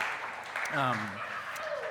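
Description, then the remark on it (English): An audience claps steadily for about two seconds, a soft, dense patter of many hands, with a brief voice calling out over it near the start. “Yeah, you can clap.”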